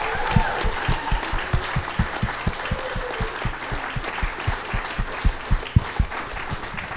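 An audience applauds loudly and steadily, a dense wash of many hands clapping, with a regular low thump pulsing underneath about three times a second throughout.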